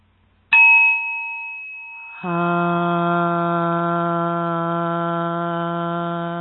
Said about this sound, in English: And now we chant. Seven times we're going to chant hum to give her the energy. Seven times to continue her work.